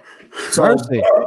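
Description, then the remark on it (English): A dog barks twice in quick succession, loud, with a breathy, huffing start before the first bark. “So, you hear that dog barking.”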